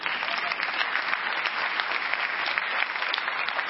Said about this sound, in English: Clap for me now.